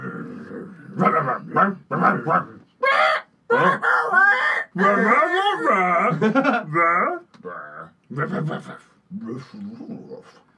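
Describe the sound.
People imitate dogs, trading yips, growls and barking noises back and forth in quick bursts, their voices rising and falling with little pause between the mock barks.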